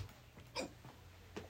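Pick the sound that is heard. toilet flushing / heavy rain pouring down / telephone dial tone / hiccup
hiccup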